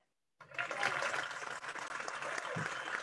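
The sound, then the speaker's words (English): After a brief moment of silence, a burst of crowd applause starts and holds steady and fairly loud for a couple of seconds, dense clapping with no voices. “That was a big applause for John.”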